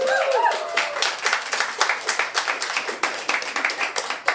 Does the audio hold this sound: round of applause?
yes